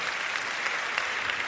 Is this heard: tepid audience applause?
yes